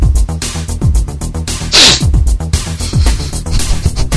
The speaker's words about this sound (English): It's a preemptive sniff. Oh, before the big sniff.